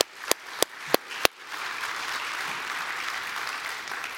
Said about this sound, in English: These individuals lovingly serve our congregation, our people, our children, and we are so thankful for them. Let's give a round of applause for them and just thank them.